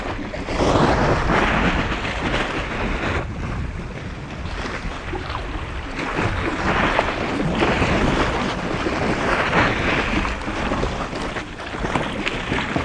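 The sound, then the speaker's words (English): Water laps and sloshes underneath the overhanging ice of an iceberg in a steady, continuous wash, with gusty wind rumbling across the microphone throughout. No one speaks. “You can hear the water that laps underneath the ice.”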